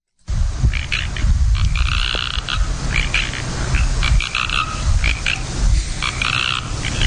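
A single tree frog croaks in repeated bright, rattling bursts for several seconds, set against a steady low rumble of background noise.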